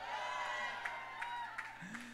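An audience at Inspire Church cheers and applauds in a steady, moderately loud wash of mixed voices and whoops, with a few sharper claps standing out for about two seconds.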